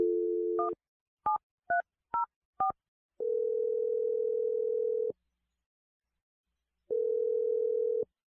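A steady telephone dial tone gives way to five quick touch-tone beeps as a phone number is dialed for a radio show call, followed by long flat ringing tones with a pause between them, clear with no voices.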